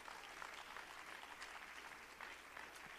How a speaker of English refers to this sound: Yes, clap your hands to Jesus Christ.